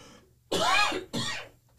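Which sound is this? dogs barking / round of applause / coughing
coughing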